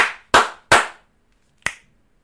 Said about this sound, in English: 3 slaps and a snap.